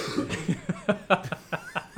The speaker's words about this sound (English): No, I just heard him coughing there. You didn't mishear it.